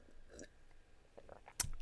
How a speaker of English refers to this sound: Sip. Oh my God. I've never burped so much from drinking water.